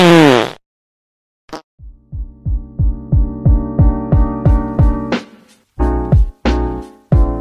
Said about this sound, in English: Hey Alexa, play fart sound.